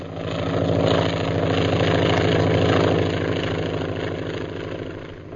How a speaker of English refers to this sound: Air wagon. What's that airplane doing around here?